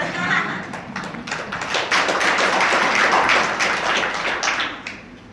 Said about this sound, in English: Is everyone in your industry struggling? No. There's an opportunity to clap, but anyway.